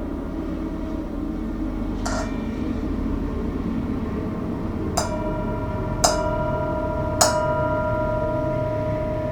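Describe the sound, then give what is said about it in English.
A mindfulness bell is struck four times at uneven intervals, each clear metallic tone lingering and ringing on, over the steady low rumble of a passing train. “As always, enjoy the sound of the mindfulness bell as we enter into the realm of lore, fairy and folklore.”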